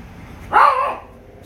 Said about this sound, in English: That's Shmoo. That's my local hunter dog. You're all right, good boy.